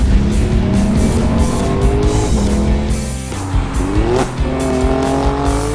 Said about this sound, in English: You ready? Run the VT. This is how a car should sound. Listen to this.